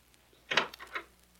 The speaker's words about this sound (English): Oh, listen, that's the door.